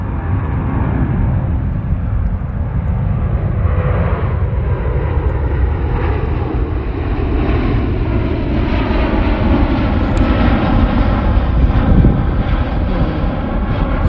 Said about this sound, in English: Yes, there are planes that fly intermittently overhead.